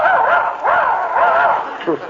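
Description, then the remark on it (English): A human voice imitates a dog barking: three drawn-out, howling barks in quick succession, then a short yip, loud with no other sounds around them. “Now he thinks he's a dog.”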